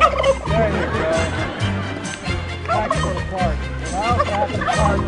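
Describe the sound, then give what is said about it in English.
A turkey at the White House Thanksgiving turkey pardon held by President Biden gobbles loudly in repeated rattling bursts that run through the whole stretch, with a low, steady rumble of background noise underneath. “This turkey represents America's 45 million turkeys who will begin making their irreplaceable contribution to our Thanksgiving celebration.”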